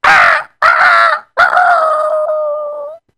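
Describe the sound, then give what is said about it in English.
A hoarse, raspy rooster crow in the morning, loud: two short bursts followed by a long, drawn-out final note that trails off, with no other sounds around it. “And the next morning, the rooster crowed.”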